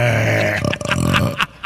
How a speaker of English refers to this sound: Thank you, sir. That was good. I would put your on-the-spot impromptu belches against anybody. Very good.